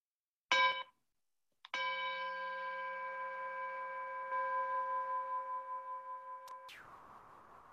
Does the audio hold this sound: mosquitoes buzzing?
no